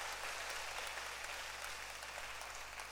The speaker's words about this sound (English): for in Christ Jesus, can you clap for Christ Jesus?